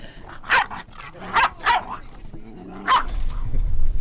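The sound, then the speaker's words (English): A dog barks sharply four times at uneven intervals, loud, with a pair of quick barks in the middle and a low rumble building at the end. “We need to get me some dog biscuits or something.”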